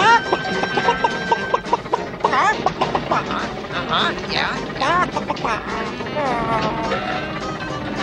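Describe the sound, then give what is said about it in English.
Rapid, jittery clucks from Camilla the chicken, Gonzo's Muppet girlfriend, repeat in bursts across the whole stretch, mixed with overlapping voices and busy background noise, loud. “While avoiding Doc Hooper and Max, Kermit and Fozzie meet another Muppet favorite, Gonzo, and his girlfriend Camilla, the chicken.”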